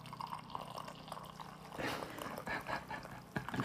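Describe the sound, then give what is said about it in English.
After a brief hushed moment, chocolate mint tea is poured into a cup close to a microphone, a steady, bubbling splash of liquid that continues to the end, with no one talking over it. “I'm going to pour this tea.”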